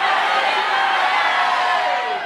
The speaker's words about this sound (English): How about in Tiffany's honor, on the count of three, you yell your full name in honor of Tiffany. Ready? One, two, three.